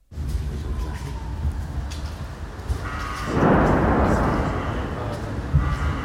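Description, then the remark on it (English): A faint, thin whistle of a flying missile in the war-torn city of Kherson gives way to a heavy, rumbling explosion that swells and lingers for a second or so over a steady wash of background noise. “Right now, you will be able to hear the sound of a flying missile, first a whistle, then a bang.”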